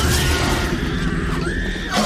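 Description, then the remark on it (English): A loud, sustained T-Rex roar designed by Gary Reitzman, blended from crocodile (low end), lion (attack) and baby elephant (high end) calls: a deep rumbling growl beneath a harsh, shrieking upper cry that bends and rises, filling about two seconds without any speech. “Crocodile for the low end, the lion for the attack of the sound, and the baby elephant is the high end.”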